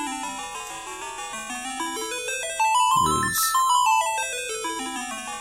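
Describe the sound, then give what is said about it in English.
Slowed-down NES video game music from a game released in 1990: a bright, beeping chiptune melody with stepping arpeggiated notes rising and falling in a steady loop, with a short spoken phrase breaking in midway. “It kind of removes some of those high chiming notes from the original.”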